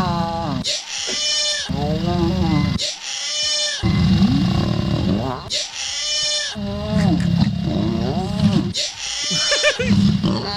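Lion mating noises blended with a loud human yell: a series of strained, wavering, bleat-like cries in repeated bursts, with pitch sliding up and down over a rough low rumble.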